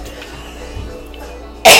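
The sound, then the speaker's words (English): After a stretch of quiet room tone, a single loud, harsh cough bursts out right at the end, abrupt and breathy, from a person with a bronchial allergy from pollen in Virginia. “Can you get me my cough medicine?”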